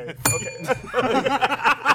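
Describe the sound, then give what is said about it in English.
A single bright, high bell ding rings out sharply and hangs for a moment before fading, followed by people laughing and talking. “The one time I appreciate the bell.”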